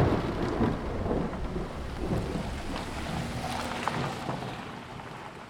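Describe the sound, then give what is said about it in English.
Steady rain pours down beneath a deep, continuous rumble of thunder, with a dense wash of noise that holds at an even loudness throughout and no voices. “Well, we're lucky it's raining, so, yeah.”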